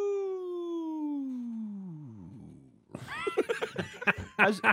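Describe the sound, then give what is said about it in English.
A person lets out a long, sustained howl whose pitch slowly slides downward and fades out, followed by choppy bursts of voices and what sounds like laughter. “Nobody's howling for me, right?”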